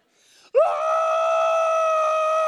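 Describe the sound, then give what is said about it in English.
A person riding a horse named Atrevido lets out one loud, high-pitched scream that rises sharply and then holds steady and unbroken for about two seconds, preceded by a faint breathy sound. “I literally screamed.”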